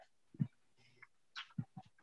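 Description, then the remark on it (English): A dog makes a handful of short, muffled noises, a low woof followed by a brief whining sound and then a quick run of soft barks, with no talking. “It's the dog.”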